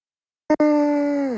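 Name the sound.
a loud yawn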